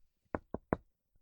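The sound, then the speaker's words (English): Three quick, firm knocks on a door, evenly spaced, followed by a faint, soft bump or two, otherwise quiet. “Calree has to answer the door because I'm naked in the tub”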